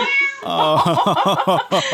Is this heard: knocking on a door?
no